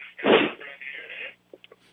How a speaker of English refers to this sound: I think you kind of sneezed a little bit. I kind of cleared your nose.